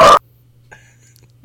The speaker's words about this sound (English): Oh, he's barking.